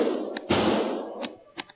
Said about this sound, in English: That's the bad guy shooting. And so that guy's got a pistol, so they want the rifle to go through.